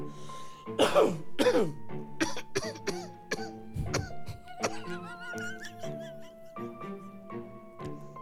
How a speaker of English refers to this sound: This is not going to be enjoyable to listen to. It is absolutely. People love us. People love hearing people cough up a lung. They don't mind.